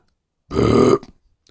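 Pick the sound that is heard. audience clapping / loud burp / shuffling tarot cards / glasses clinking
loud burp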